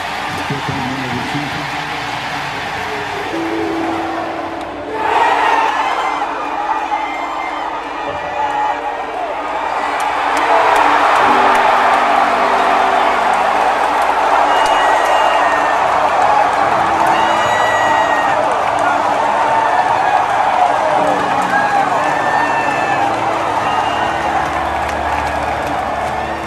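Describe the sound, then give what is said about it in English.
A big stadium crowd roars in a sustained ovation after a three-run home run by Kellum Clark that won a national championship, swelling louder partway through and holding steady, with scattered shouts, whistles and clapping in the dense, continuous cheering. “And that's the moment, because the ovation he got was the home run ovation.”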